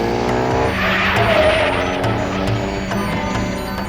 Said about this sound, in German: Der Motor heulte auf und mit quietschenden Reifen schoss der Wagen davon.